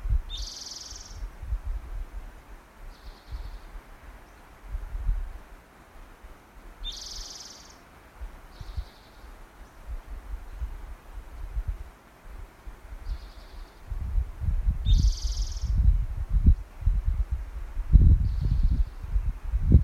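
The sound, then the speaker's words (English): A towhee sings a short, bright phrase three times, each separated by several seconds of pause, with a soft trailing note after each, near the ocean. A low rumble and rustle run underneath, and no one speaks. “As the towhee goes on and on”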